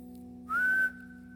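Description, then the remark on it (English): A single steady whistled note from a parent, the family whistle for calling the kids, held flat at one pitch for about half a second, fairly loud over a low constant background hum. “I have a whistle for my kids.”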